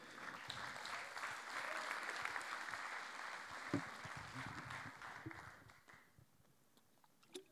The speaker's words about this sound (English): A round of applause